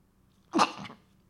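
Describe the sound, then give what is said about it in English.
A single sharp sneeze bursts out, a quick explosive blast with a short breathy tail, then quiet again. No one talks. “I literally haven't sneezed all day and I sneeze now.”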